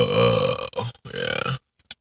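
A long, loud, close-up burp, drawn out for over a second with a couple of brief breaks, then a tiny trailing gulp after silence.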